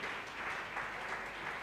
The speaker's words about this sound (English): Clap your two hands for Jesus right now.